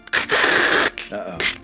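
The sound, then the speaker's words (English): A voice imitates a loudspeaker crackle with a harsh, hissy burst of static-like noise lasting most of a second, then a shorter, quieter crackly burst after a brief pause. “Then over the same loudspeaker system you heard Persepolis speak from before the fight, again you hear them start to chime in, but this time there's like a crackle.”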